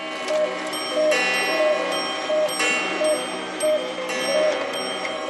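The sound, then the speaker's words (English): Many clocks, all set 25 minutes slow, tick over one another while bright chimes ring out together for eight o'clock, a dense, layered clatter of ticking under sustained ringing tones that rises in bursts throughout. “Are those my clocks, my ear? Yeah, it's 8 o'clock.”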